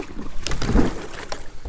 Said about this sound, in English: Boat's in the water now.